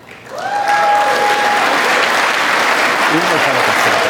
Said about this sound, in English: Republicans stood up and clapped for that, which I found to be just absolutely disgusting.